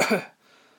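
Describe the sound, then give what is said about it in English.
A woman gives a single soft, short polite cough, fairly quiet, fading quickly into a faint hush. “She gave a polite cough.”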